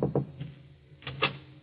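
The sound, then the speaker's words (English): Soft knocking on a door at dusk: two quick raps, a pause of about a second, then two more. The knocks are muffled and low, with no voices. “Then, as the afternoon fades and dusk sets in, there is a knock at Lucia's door.”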